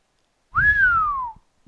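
A single clear human whistle on a music record, rising briefly then gliding steadily downward in pitch over about a second, heard alone with a faint low rumble beneath it.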